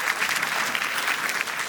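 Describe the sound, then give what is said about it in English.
Steady applause from an audience fills the whole moment, a dense patter of many hands clapping at once with no pauses or speech. “Give yourself a round of applause for that.”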